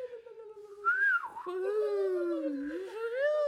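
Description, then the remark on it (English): A beautiful, mournful whistling hum glides slowly up and down in pitch, sustained and wavering for a few seconds, clear with no talking. “Billy hears a beautiful and slightly sad whistle hum”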